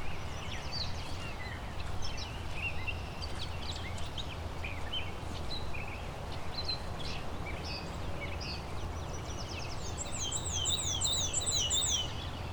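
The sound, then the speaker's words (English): A black-and-white warbler sings a thin, high, squeaky series of repeated two-note phrases, clearest near the end, with scattered bird chirps over a steady rushing background hiss. “So we've got a black and white warbler up here.”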